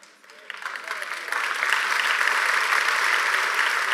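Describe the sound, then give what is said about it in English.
An audience breaks into applause, the clapping swelling over the first second or so into a dense, steady roar of many hands that holds at full strength to the end. “We're clapping because we want to be hated by the world.”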